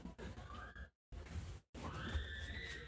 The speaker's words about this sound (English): What the hell's going on out here? That's the kids. Who is that screaming? Are you laughing? Who?